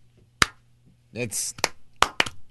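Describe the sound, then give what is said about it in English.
A few scattered, sharp hand claps from an audience, loud and irregular rather than sustained applause, with a brief voice speaking between them. “Why are we clapping?”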